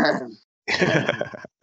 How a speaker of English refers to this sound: I'm sorry, I've got a terrible cough.